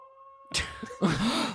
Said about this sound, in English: that's because we haven't made it to our next toy, which is Dog-E, a robot dog for the whole family.